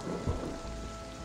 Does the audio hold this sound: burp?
no